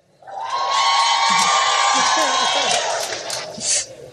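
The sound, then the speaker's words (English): A live crowd bursts into loud, sustained yelling and cheering that swells quickly and holds for several seconds, with a voice faintly audible beneath the roar before it tapers off. “Make some noise if y'all would tell.”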